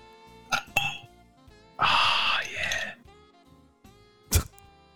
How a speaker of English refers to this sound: I actually can't hear the pouring. I can just hear like the glass clanging.